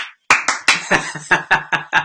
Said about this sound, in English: There's claps, like different cheers and claps. Let's go Dodgers.